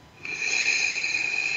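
A long, deep breath drawn in, airy and slightly whistling, steady and unbroken for over a second, with no talking.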